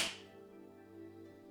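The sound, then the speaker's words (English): One sharp, bright hand clap at the very start, made with the hands after reaching high above the head in a meditation exercise, quickly fading into a steady, soft low hum of sustained tones that carries on with no voices. “And then you seal all that energy with a clap”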